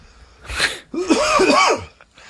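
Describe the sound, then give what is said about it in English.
A single loud cough from a man: a sharp breathy burst followed by a rough, voiced, strained tail lasting about a second, with no talking around it. “he only got one cough in the whole show.”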